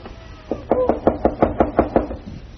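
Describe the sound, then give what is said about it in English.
Someone raps on a house door about nine times in a quick, steady rhythm, each knock sharp, with no voices, just faint background noise before and after. “Open the door, good neighbor. Open the door to a friend.”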